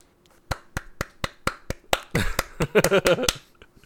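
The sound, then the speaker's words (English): A single person applauds a computer that has finally started working, clapping in a steady, quick rhythm, about a dozen sharp, crisp claps over a few seconds, with a voice briefly joining in partway through. “Are you applauding your computer now that it's finally deciding to be a computer?”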